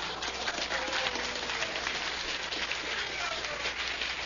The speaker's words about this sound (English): Listen to the phonies applauding here.